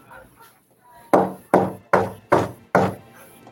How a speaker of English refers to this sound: All four of you hear a gentle knock at the door.